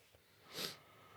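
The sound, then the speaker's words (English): A single breathy sniff, a short sharp inhale lasting about a quarter second, of someone nosing a glass of rum, with quiet background tone and no talking. “Do you want to go first, mate? I'll sniff.”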